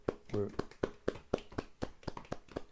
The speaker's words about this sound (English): Oh, they're outside clapping for the caregivers.